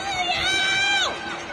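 People screaming from windows at night in Shanghai: a woman's loud, sustained high-pitched shriek, reportedly screaming "Give me back my freedom," holds steady, then swoops sharply downward in pitch, over a faint wash of crowd noise.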